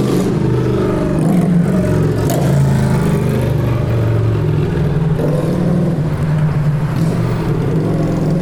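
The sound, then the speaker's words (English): A loud Harley motorcycle engine rumbles steadily as it passes, its deep throaty drone holding for several seconds with a slight rise and fall in revs and no voices. “I don't like those Harley motorcycles, too loud.”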